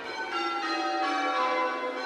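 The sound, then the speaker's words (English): A peal of the 12 bells of Southwark Cathedral, rung by the Southwark Cathedral Society of Bell Ringers and recorded in 2011, rings continuously, dense overlapping metallic tones blending into a shimmering, sustained wash with no pauses between strikes, steady and fairly loud throughout. “In this programme, you heard the 12 bells of Southwark Cathedral, rung by the Southwark Cathedral Society of Bell Ringers and recorded in 2011 by Duncan Whitley.”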